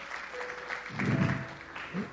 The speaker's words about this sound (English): You know, one of the things that we've got to realize, as much as God is a loving, forgiving, gracious God, amen? Somebody clap your hands on that, don't you?